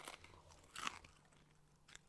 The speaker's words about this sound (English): If you're gonna do ASMR, chew right.